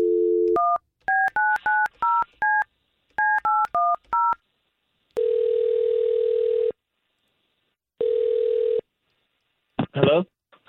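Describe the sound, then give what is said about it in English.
A short dial tone gives way to a quick series of touch-tone keypad beeps in two bursts as a call is placed to a man, then two long ringback tones sound before a voice briefly answers at the end. “Okay, well, here, we're going to try to call him with the information that you gave us, okay?”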